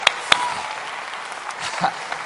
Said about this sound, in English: Come on, clap your hands to the Lord and praise him.